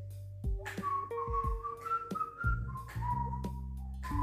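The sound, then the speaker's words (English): A person whistles a short tune, clear, the melody stepping through sustained pitches with a steady low hum or drone underneath and soft breathy attacks between notes. “I'm not sure what it is, but there's a distinct sound along with the whistling.”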